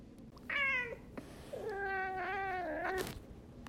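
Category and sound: animal, domestic cat meowing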